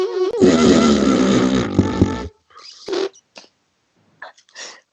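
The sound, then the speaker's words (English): A voice blows a loud, buzzy raspberry imitating a tiny baby's fart, lasting about two seconds, followed by a few softer, brief sputtering bursts. “Even tiny babies' bums fart.”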